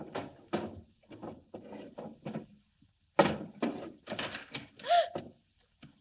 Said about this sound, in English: I stood there, opening and shutting drawers.